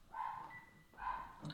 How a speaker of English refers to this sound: So yeah, dogs so barking in the background. You just ignore my dogs.